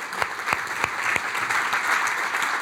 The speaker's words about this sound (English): Thank you to all of our friends on the live stream. Can I get a big round of applause for all of our live stream attendees?